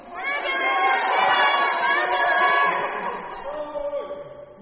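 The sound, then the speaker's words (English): An audience, prompted by a speaker, shouts and yells together on cue in one sustained, loud roar of many voices that begins abruptly and holds for several seconds before gradually thinning out. “I want you guys to come on now. Ready? And go!”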